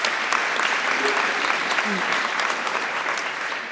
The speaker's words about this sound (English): So round of applause again for our brilliant brains trust today.